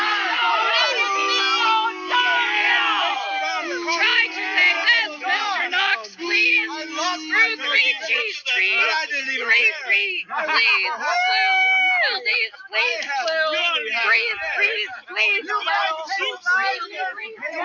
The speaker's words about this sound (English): I don't know if they're trying to listen in order to oppose the preaching, but there's also people just shouting and making a lot of noise, as you know, obviously you could tell.